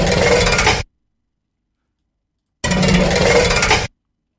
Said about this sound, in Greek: Αυτό είναι που παίρνουμε το δάχτυλό μας και παίζουμε με τη μάσκα του αυτοκινήτου μπροστά